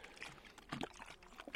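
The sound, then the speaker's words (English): A short, quiet splash of liquid being poured into a water bottle, with a brief gurgling burst in the middle and no talking. “vitamin C drink mix, and a little squirt of Mio Energy, which is a product I hadn't really tried before.”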